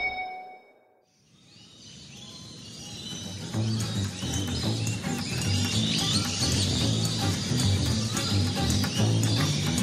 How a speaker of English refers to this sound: African Treetops is an aviary that recreates a rainforest canopy and houses a lot of rather noisy birds from Africa.